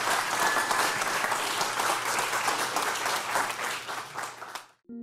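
A crowd applauds steadily with dense, loud clapping for about four and a half seconds, then it cuts off abruptly and a low tone begins.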